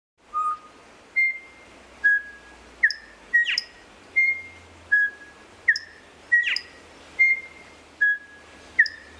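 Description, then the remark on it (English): A male songbird sings a clear, melodic whistled song of about a dozen evenly spaced notes, each a bright slurred whistle, some rising to higher chirps, loud against a quiet background. “Here's an example of just musicality of a male song.”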